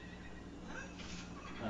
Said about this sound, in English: Why did they make horse noises? I didn't notice that. Aren't they just horses with horns?